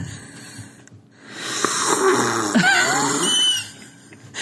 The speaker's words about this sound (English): Is it relaxing to hear me sip tea right now? Wow, that was a real... Listen to the difference of me sipping tea.